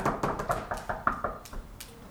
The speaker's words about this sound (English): Good luck on that. Knock on marble. Knock on marble.